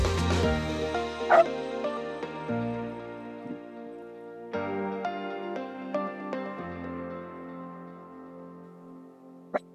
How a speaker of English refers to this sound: Hello, everybody, and hello from Charlie as well. He's barking at the postman who's late today and just put something through the door. So I'm sorry if you heard him through the music, but he wanted to say hello too.